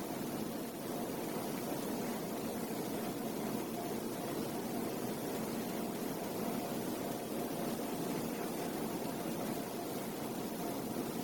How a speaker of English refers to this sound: For me, the sound of the air conditioning stands out.